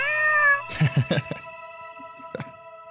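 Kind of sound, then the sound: animal, cat meowing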